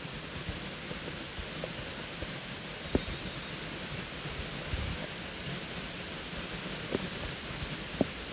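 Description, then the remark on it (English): A steady, even wash of running water from a little creek that runs through the grounds of a childhood home, with light rain pattering and a few soft drips or ticks standing out now and then; no voices. “This is a little creek that runs right through Dolly's childhood home.”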